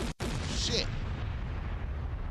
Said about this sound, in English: Drop a bomb for niggas named Ice getting movie money.